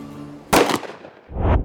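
A single loud gunshot, fired straight up into the air, cracks out sharply, followed about a second later by a deeper, rumbling boom as it fades. No voices are heard.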